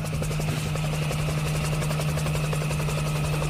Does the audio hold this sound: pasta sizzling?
no